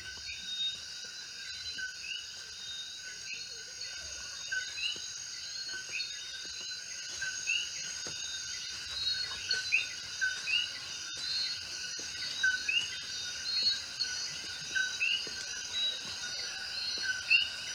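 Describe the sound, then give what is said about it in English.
A jungle at night: a dense, continuous chorus of shrill insects drones at several steady high pitches, while scattered short bird chirps and calls pop in and out above it. “And I want you to hear the jungle coming alive.”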